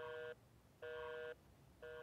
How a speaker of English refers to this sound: I said, hey, what happens if it's off the hook when it gets turned on? And so you'll hear that it gets... Oh, gives me this busy signal here.